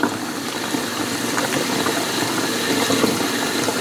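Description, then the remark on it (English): A steady, hissing gurgle of foamy liquid from a 1-liter bottle being poured slowly into a 2-liter plastic bottle containing syrup, continuous, with faint fizzing texture and no talking. “Okay, that 1-liter bottle is in the 2-liter bottle with the syrup.”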